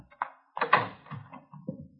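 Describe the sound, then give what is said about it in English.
A front door is unlatched and pulled open to answer it: a quick cluster of wooden clunks and latch rattles, then a final heavier knock as it swings wide. No voices. “Front door. Mind answering it?”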